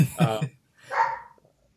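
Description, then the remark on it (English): Dogs at home bark excitedly as the owner's wife arrives home from shopping, two loud, sharp barks in quick succession followed by quiet, with no one talking. “I guess we'll do this part after, now that the dogs are ape shit.”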